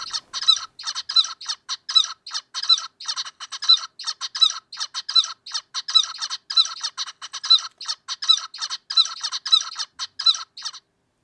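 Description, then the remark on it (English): Zebra finch song in an arrhythmic version with altered timing repeats its buzzy, chattering syllables for about eleven seconds, the timing slightly uneven with small skips between bursts. It is clear, and no one speaks. “So we're interested in essentially if the zebra finches can tell the difference.”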